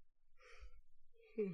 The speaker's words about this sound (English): I'm sorry. I'm a bit sleepy, guys. I think you hear me yawning throughout the episode. I'm a bit sleepy